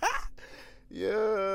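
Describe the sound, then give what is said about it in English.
A person lying back to sleep makes a single snore recorded with a microphone held to it: a short breathy rasp, a brief pause, then a drawn-out, buzzing, throaty tone that swells and holds. No talking. “I'm gonna put the mic to your snore.”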